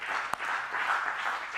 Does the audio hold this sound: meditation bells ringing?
no